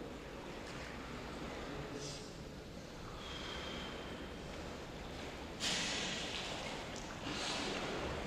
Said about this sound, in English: Just face that way now, and let's see you deep breathing and relaxing.